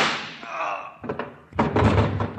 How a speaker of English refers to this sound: Holy smoke. Those shots came through the transom. Come on. Somebody been in the next room all the time.